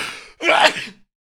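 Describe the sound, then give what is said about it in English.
A single sneeze by a person at a switched-on microphone: a breathy intake, a brief pause, then a loud, sharp burst of air that fades out quickly, with silence after. “I turn the microphone on, start yawning, sneezing.”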